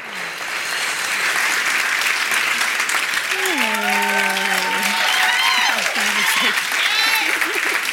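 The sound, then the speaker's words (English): Sustained crowd applause at Soul City Church, welcoming Sarah Bessey, fills the whole clip: a dense, steady wash of clapping with cheers and whoops rising over it partway through. “Can y'all just start clapping and letting her know how much we love her and how glad we are that she's here?”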